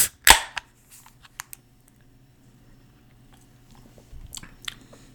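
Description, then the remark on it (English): A can of beer from Texas cracks open with one loud, sharp snap, followed by a few faint clicks and a couple of short bursts of fizzy hiss near the end. No one speaks. “So I'm going to crack this open and try it.”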